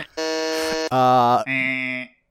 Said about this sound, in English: Okay, this is kind of awful, actually. I kind of hate this a lot. I hope you edit in the sound effect of the buzz, because it's awful.